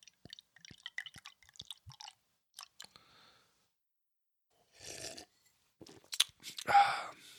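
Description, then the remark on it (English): Clicks and light taps of handling, followed by a short fizzy pour of cold Torch Pilsner beer and a loud, wet sip near the end, with no one talking. “But let's pour one. Let's ease the pain. Cheers.”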